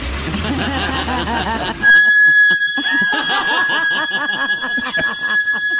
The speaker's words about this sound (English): No, that's Jeff pulling out of the driveway. I gotta fix those damn brakes.